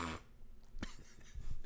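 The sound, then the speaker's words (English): A voice mimics a fart with a brief breathy burst followed by low, sputtering buzzy pulses, moderately loud, lasting under two seconds. “I like, was at a urinal peeing and farted. And the guy was like, nice. Because it was like...”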